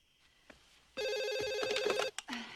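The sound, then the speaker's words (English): A telephone rings with a loud, bright electronic trill of rapidly repeating tones, sounding continuously for about a second before cutting off, followed by a brief lower tone. “Well, so why'd you dial it again?”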